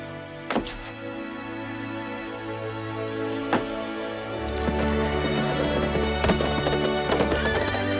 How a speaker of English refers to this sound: We have this great, wonderful moment where the four heroes ride out on the four white horses.